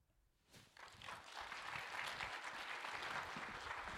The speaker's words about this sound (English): My man right there is excited. He's got the clap going on.